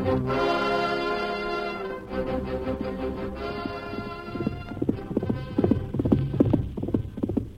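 Rapid, rhythmic hoofbeats of a horse galloping in moonlight, pushed hard by its rider Birdwell, pound in steadily and grow louder, following a stretch of sustained orchestral music that carries on underneath.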